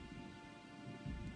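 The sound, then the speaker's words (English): Soft, steady rain hisses beneath a low rolling rumble of thunder that swells slightly toward the end; no voices, just a quiet, continuous storm ambience at the start of a music track. “Rainy day. Whoa. Winter's coming.”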